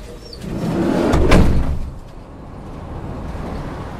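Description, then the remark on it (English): The sliding door of a dog transport van rolls open with a rising rumbling slide that peaks in a brief loud clunk, then settles into a low steady background hum. No one speaks. “So by the time that we arrive up in the north, you can open up that door and you don't typically smell anything.”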